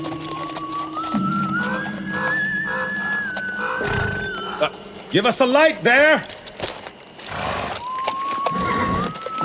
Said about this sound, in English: Hark, I hear horses.